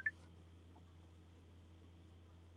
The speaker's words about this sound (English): Someone's phone's going off. Hopefully it's mine.